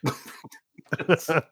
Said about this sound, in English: Jeez, I'm gonna cough again.